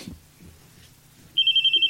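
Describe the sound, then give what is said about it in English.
A high-pitched bell suddenly starts ringing in rapid, even pulses, loud and steady, after a stretch of quiet low rumbling. “Saved by the bell.”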